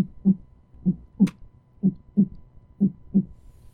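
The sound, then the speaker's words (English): A heartbeat sound effect: soft, low thumps in a steady lub-dub rhythm, about seven beats over a few seconds, clear with no voices. “Beautiful right heartbeat and waveform.”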